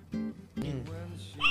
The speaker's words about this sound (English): Well, goddamn hiccup, mother. What's wrong with you, man? You got the hiccups? I'm a drunk dude. That's what that White Claw does to you, bro.